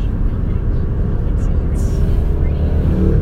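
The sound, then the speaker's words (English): A motorcycle passes by, its loud, steady engine rumble filling the whole few seconds with a deep, throaty drone. “And a motorcycle.”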